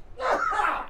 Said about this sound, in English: excuse me. Gesundheit. That too. That is, most people don't sneeze on the air, but that was incredible. I've never seen something like that.